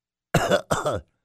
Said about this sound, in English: I always tell I have a cold coming because things like taste funny, the food tastes funny, or you can't really taste it at all, and the nose won't stop running, and the cough is hacking.